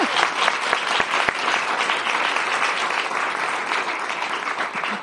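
An audience claps steadily for about five seconds, a dense, even wash of many hands with a few sharper individual claps popping out, holding at a fairly loud, constant level throughout.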